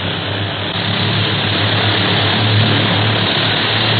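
A steady, loud propeller aircraft engine drones as the plane climbs steeply, a continuous low roar with a strong hum that holds level throughout, with no voices.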